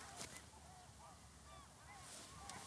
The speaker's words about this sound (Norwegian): Hør på fuglene.